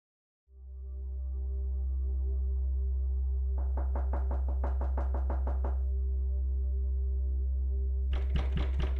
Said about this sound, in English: You knock at a door in Armagh and enter a terrain of myth, a ritual performance of conflict, death and resurrection.